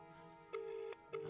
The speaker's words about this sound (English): Oh, it's ringing. It's ringing. Here we go. Now, good. It's ringing. Please answer.